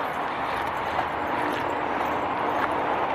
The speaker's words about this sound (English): But I was thinking, that train is a few streets down, as you can hear.